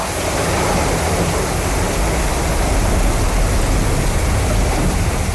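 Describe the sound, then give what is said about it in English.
Steady, dense rain patters on a tin roof, a continuous hiss of countless drops with no pauses or voices, holding the same loudness throughout. “Triple J lunch presenter Dave Woodhead would probably be a fan of the pink noise because he used to listen to the rain hitting the tin roof sound a lot, which helped him sleep, like this one.”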